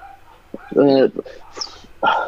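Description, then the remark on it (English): A dog barks, two loud, sharp barks about a second apart, with faint shuffling noises between them. “Oh, are you barking?”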